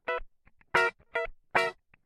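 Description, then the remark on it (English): Funky electric guitar played straight in DI through a Neural DSP Quad Cortex amp-modeling pedal: four bright, staccato chord stabs in a choppy rhythm, with quiet muted scratches between them, clear with no voices. “A lot of those funk tones are just straight DIY guitar.”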